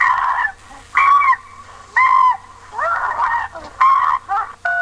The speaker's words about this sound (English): Even though he's hearing monkey noises in the background. yeah. I wonder what the neighbors think. Like, there's a freaking 200-pound chimp screaming at the top of its lungs